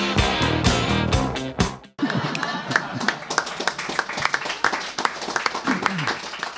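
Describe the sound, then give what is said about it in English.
A burst of music cuts off abruptly, then an audience breaks into steady, dense applause after a reading, many clapping hands with a few cheers and voices mixed in, lasting several seconds. “Now I feel bad taking that applause.”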